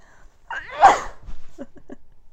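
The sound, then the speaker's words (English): A single loud human sneeze bursts out with a sharp inhale-and-blast, followed by a few soft breathy sniffles or murmurs trailing off. “I'm sneezing.”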